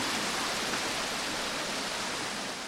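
A waterfall fed by a large lake rushes steadily at the spring that is the source of the River Bride in England, a dense, even roar of falling water that fills the whole short stretch without pause, loud, with no voices or other sounds breaking through.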